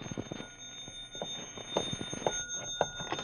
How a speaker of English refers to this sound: And then the phone rang.